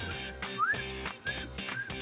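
A person whistles a catcall, a quick upward-sliding note followed by two short, shrill chirps, over a steady background murmur.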